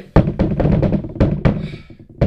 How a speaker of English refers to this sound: Door. Yeah, I'm gonna knock on the door.